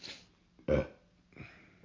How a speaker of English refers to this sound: That was pleasant. So, thank you for that. Well, I really can't burp very loud, so.